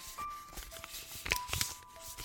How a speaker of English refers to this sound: Lucy frantically folds another paper crane and lines it up with the others.